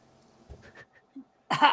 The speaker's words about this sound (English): Cough, cough.